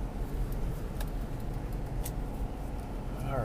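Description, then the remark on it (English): Faint, brief squeaks and light ticks from loose ice shifting in the back of a moving car, under a steady low road rumble, with one clearer rising squeak near the end. “You hear the fucking squeaking? It's just ice kind of jimmying around in the car, in the back of the car, something, or the car falling apart.”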